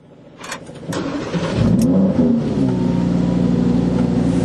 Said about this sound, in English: You have to flip up a little cover for the start-stop button so that you can pretend you're some kind of race car driver. I don't know. So the V10 is right behind your head and is making a whole bunch of noise.